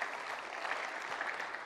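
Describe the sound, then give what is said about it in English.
A church audience claps together as an offering of praise to the Lord, a steady, dense wash of applause, many hands overlapping into an even, sustained patter with no voices standing out. “Go ahead, give a little clap offering of praise to the Lord.”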